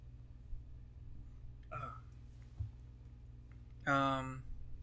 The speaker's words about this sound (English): I'm burping. Okay, so burp and then move on.